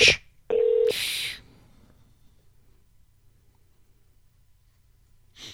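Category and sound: signal or alarm, telephone keypad dialing tones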